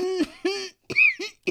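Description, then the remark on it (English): A voice imitates trying to hold in a cough while on a plane: a few short, strained, muffled bursts pushed through a closed throat, fairly loud, with brief gaps between them and no other sound. “So I'm in the plane trying to hold on to this goddamn cough.”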